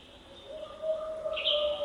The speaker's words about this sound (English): An owl joins a chorus of other birds at Big Beaver Valley in the northern end of the park. The North Cascades is one of the least visited of the U.S. national parks.